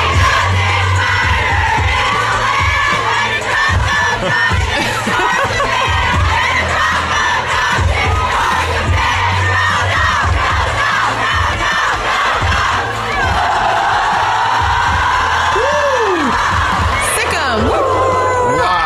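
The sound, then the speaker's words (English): A packed bar crowd chants and cheers loudly together, calling the dogs along with a woman after she says go dogs, rhythmic shouts rising over a dense crowd roar, slightly distorted, recorded on a fan's phone. “It's hard to hear because this is taken from like a fan's phone, but this is one of her saying go dogs and then calling the dogs with everyone while she was out there, which I thought was cool.”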